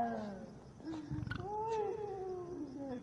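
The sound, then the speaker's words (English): A cat lets out a long, wavering caterwaul, its drawn-out yowl bending up and down in pitch for a few seconds, fairly clear against a low background rumble. “There's some idiot is saying it's a cat going.”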